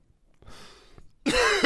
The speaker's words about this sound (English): You got that cough too. I have it too. Yeah, it's hideous. Stop coughing.